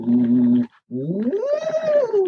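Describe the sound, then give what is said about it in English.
A voice hums through a straw about half an inch wide and 9 or 10 inches long, cut at an angle at one end, into a bottle holding 2 or 3 inches of water, holding a steady low note, pausing briefly, then sliding upward and gently back down, with a bubbly, buzzing texture over the tone. “I stick that in into a bottle of water about 2 or 3 inches full, and I would just hum on it like this.”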